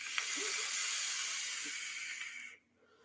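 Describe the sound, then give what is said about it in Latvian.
A steady, airy hiss of vapor being drawn from an e-cigarette using 100% VG liquid lasts about two and a half seconds, then cuts off abruptly into near silence. Fairly loud, with no talking. “Šitādus tvaikus, kā esam pieredz vilkt.”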